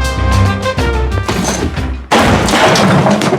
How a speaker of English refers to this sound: And the teacher throws something at him. It smashes against the wall.